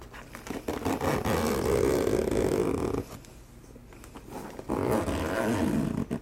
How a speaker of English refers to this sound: So I'm gonna zip it back up.